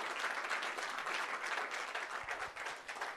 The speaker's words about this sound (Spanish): Dele un aplauso al Señor si usted desea, hermano.